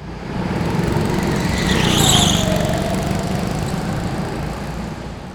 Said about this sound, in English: The thing certainly worked, maybe too well. Every time she started it up and released the handbrake, I got whiplash. I grabbed the roll bar and we bounced down the street in a rattling ball of exhaust smoke.